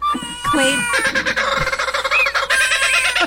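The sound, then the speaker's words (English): A voice imitates a turkey, like one brought along as a service animal, letting out a loud, rapid, warbling gobble with wavering high-pitched tones that runs for about three seconds without pause. “someone brought a turkey the other day.”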